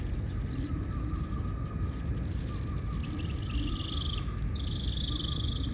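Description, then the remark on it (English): New Zealand short-tailed bats chirp in thin, high-pitched squeaks over a steady low rumble as they fly about in big clouds eating bugs, with two longer, sustained whistling calls toward the end. “Oh, is that a New Zealand short-tailed bat?”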